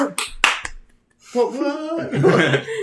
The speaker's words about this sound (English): Tiny applause. Sorry, just me clapping again. I felt like an asshole applauding myself.